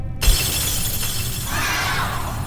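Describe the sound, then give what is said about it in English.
A loud shattering crash as an orb, flung full force, breaks against a dark black obsidian wall, followed by a sustained spray of fragments and a bright tinkling scatter of debris. No voices. “flung the orb at the wall full force, watching as it shattered against the dark black surface.”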